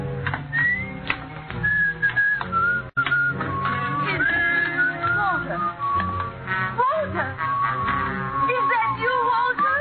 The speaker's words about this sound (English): You still remember my whistle, eh?